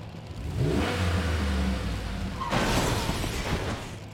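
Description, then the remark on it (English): A truck engine revs hard, a deep rumbling roar that swells and surges, then bursts into a louder, rougher blast halfway through before holding steady. No voices. “That fucking thing bit my truck.”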